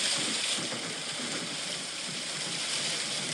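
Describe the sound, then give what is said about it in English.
Heavy rain pours down in a steady, dense hiss that holds constant throughout, with no voices and no distinct rumbles standing out. “Okay, rainstorm.”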